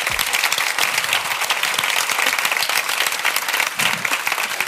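A crowd applauds steadily, many hands clapping in a dense, even wash of sound that holds at full strength throughout, with no voices standing out.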